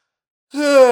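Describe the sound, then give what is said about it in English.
After a moment of silence, a single big yawn during a stretch starts up loud, a drawn-out, groaning vocal sound that carries on to the end. “Big stretch, big yawn. Look at me yawning right in your ear off the get-go.”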